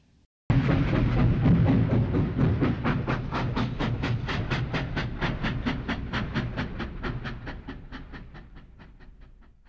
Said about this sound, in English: The train ride was long but peaceful. Only a few others were riding on the train, and many of the coaches were vacant.